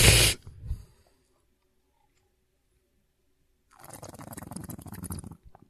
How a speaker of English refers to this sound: Yep, that's him, people. That's him breathing.